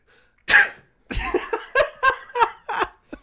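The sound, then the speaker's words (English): A person lets out a loud, exaggerated fake sneeze, then breaks into a quick run of short, rhythmic bursts of laughter. “I'd love to have a compilation of like 50 to 75 fake sneezes to play at the top of next week's episode.”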